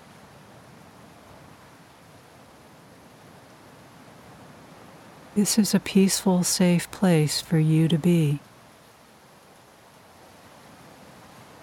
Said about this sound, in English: Enjoy the warm, soothing sand beneath your feet. The sounds of the ocean surf and the rhythm of the waves calms you.